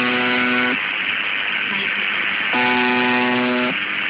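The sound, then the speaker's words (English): A harsh, low droning buzz from the UVB-76 shortwave station, which buzzes 24 hours a day from an open microphone pointed at something buzzing, sounds in two bursts, the second about a second long, over a steady bed of radio static hiss. “Like, that is a microphone pointed at something that's buzzing.”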